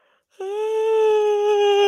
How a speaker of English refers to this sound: Big yawn. I do feel, like, exceptionally tired right now.